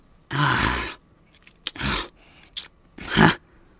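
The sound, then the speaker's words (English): Exaggerated biting and chewing noises, apparently voiced: three breathy, rasping chomps separated by short pauses, with a couple of sharp clicks between them. No words are spoken. “Don't bite them for real!”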